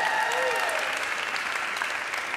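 A church audience at a baptism service applauds steadily, a dense, even wash of clapping that lasts a couple of seconds, with faint voices and a cheer mixed in.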